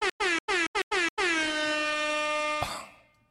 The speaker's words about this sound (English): Oh, I'm gonna give an air horn over there. We got shout outs from the left side.